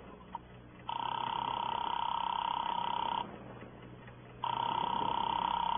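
A telephone call being placed, with two long, steady electronic ringing tones on the line separated by a short pause, heard clear over a faint low hum.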